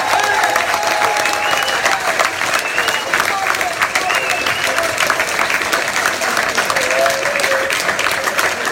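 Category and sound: crowd, crowd applause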